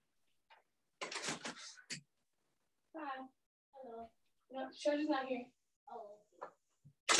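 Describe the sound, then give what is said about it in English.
A quick run of knocks on a door, fairly loud, followed by people talking, including what sounds like a child's voice. “Somebody's knocking the door.”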